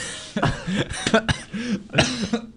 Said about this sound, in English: I'm coughing a lot. Yeah. Not good. I need some water.